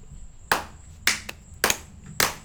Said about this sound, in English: We clap at our own shit.